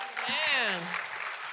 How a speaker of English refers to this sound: Give them one more big hand clap.